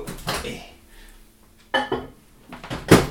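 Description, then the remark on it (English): Kitchen clatter, then the solid clunk of a microwave door shutting and a short burst of sound as the oven starts up to reheat a malty milk drink for another 30 seconds, with no talking. “I'm going to put back in the microwave just for a little bit, just to heat it back up another 30 seconds.”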